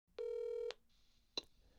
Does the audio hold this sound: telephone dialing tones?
yes